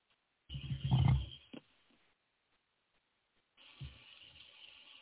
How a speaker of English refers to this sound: So that's a quick sample of chirps there. Well, they sound like clicks more than chirps. They're clicks. Yeah, they're clicks.